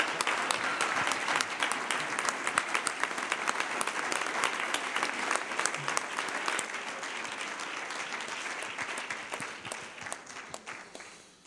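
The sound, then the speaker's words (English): An audience claps and applauds to celebrate the Lord, a dense wash of many hands that stays loud and sustained before tapering off slightly at the end, with no voices standing out. “So I want you to really clap your hands and celebrate Him as He comes to.”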